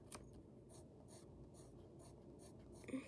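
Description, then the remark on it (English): Steady scratching of a colored pencil on paper, coloring a drawing's shorts sunny yellow, with quick back-and-forth strokes repeating in an even rhythm. No voices are heard. “Yeah, I just switched to colored pencil randomly.”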